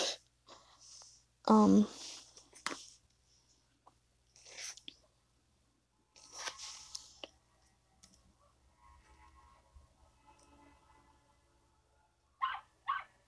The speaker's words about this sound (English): Oh god, the dogs are about to start barking. I don't know who's driving up through the driveway. I don't even know if you can, like, hear them barking in the background. You probably can.